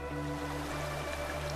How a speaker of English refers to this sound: with frothy whitecaps swirling where water rushes over the stony bed